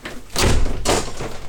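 A door slams shut, two heavy, loud thuds landing about half a second apart with a brief rattling tail, and no voices.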